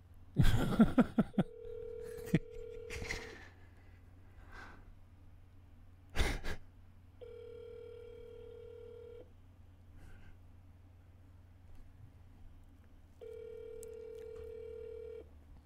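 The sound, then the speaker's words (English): A quick burst of phone-dialing beeps and a sigh, then a steady electronic ringback tone repeats three times with pauses between over a low hum, as a person phones a man who does not answer. “I'll leave him a voicemail, see if he calls me back.”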